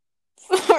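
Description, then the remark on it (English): A dog named Ollie, still only a baby and all the way downstairs, lets out a short, loud bark, a rough burst with a bright, raspy edge rising out of silence and ending abruptly, with no one talking over it. “Hello, dog.”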